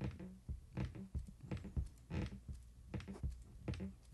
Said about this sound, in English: You're just moving my headboards? I was trying to see what kind of noise it makes when you're getting it on. Oh, it's yeah. very squeaky.